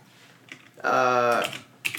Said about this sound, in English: Gosh, your keyboard. Yeah, your keyboard is still the loudest thing that has ever happened in the history of mankind.